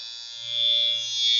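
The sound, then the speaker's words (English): A steady electric shaver buzz with a bright, high whine over a low hum, swelling slightly in loudness for about a second and a half, with no talking. “What year, within 5 years, did the electric shaver go on sale for the first time?”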